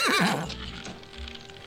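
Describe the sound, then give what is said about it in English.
A horse lets out a loud, quavering whinny that tails off after half a second, followed by softer shuffling and a few hoof clops, with no voices. “Go saddle Monsieur's horse.”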